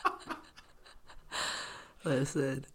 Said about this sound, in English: Listen. Oh, you guys. Can you quit yawning?